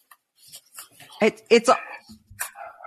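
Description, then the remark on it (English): A dog outside barks at a bush several times in quick, uneven bursts, loud, with quieter rustling and faint background noise between the barks. “He's barking at the bush.”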